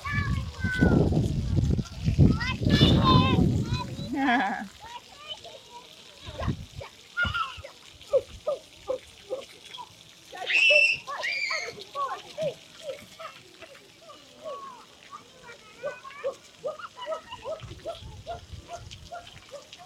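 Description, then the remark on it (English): Children shriek and chatter while splashing in water, with a burst of loud, messy splashes at first, followed by lively high-pitched voices and occasional smaller splashes. “Kids in water, trust me, they just love it.”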